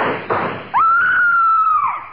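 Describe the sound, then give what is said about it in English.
A short burst of noisy thumping, then a single loud, high-pitched scream held steady for over a second before trailing off, with no talking. “Who was it that screamed?”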